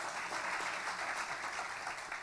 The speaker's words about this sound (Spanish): Let's give our substitute Mary a big hand of applause. Así que vamos a darle un aplauso a nuestra María sustituta.